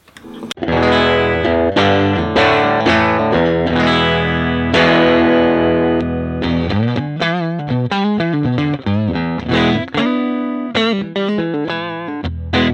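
Electric guitar played through an amp with the treble turned all the way down, sustained distorted chords giving way to choppier riffing, with a dark, muffled top end and steady loud level, no talking.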